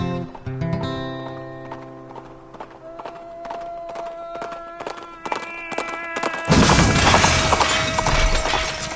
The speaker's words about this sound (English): Egad! Brown the Bandit, also known as Marshal Shiloh Brown, has crashed through the crate of dishware.